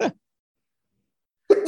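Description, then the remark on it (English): A short, sharp sneeze cuts off at the start, followed by over a second of silence before a second loud sneeze bursts out at the end. “Because I'm sneezing.”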